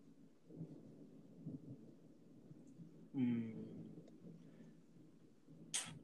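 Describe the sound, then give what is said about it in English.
Thunder rolls, a low steady rumble that swells into a sharper, louder crack midway before fading back into a background grumble. “Was that Thunder then?”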